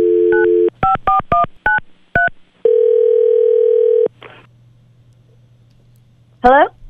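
A steady dial tone leads into a quick series of touch-tone beeps as a man's wife's number is dialed, followed by a long ringback tone and then a short rising electronic chirp.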